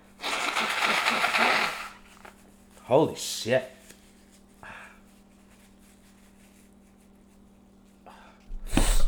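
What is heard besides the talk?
blowing nose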